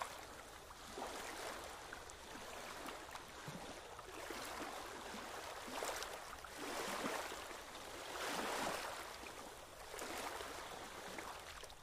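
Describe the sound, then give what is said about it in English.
Steady rushing of open sea water at the crossing to Sky, with waves swelling and washing through in slow, uneven surges, fairly loud, and no voices. “Here, she had to brave the elements of the open water.”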